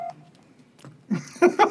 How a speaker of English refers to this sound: Patty's turning off her phone.